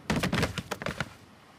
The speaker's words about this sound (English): Both fall with a hard thud.